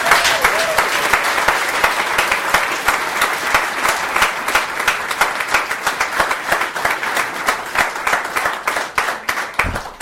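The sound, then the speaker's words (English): Sustained applause from an audience, dense overlapping claps filling the whole stretch at a steady, fairly loud level, with a few sharper individual claps standing out near the end. “let's end with a rousing round of applause for Daniel”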